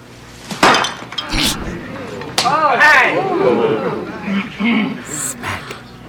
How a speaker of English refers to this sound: And that was the great Glenn Scarpelli being slapped by Bonnie Franklin.